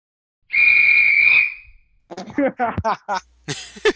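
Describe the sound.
One loud, shrill referee's whistle blast lasting about a second, close and piercing, then people start talking right after it fades.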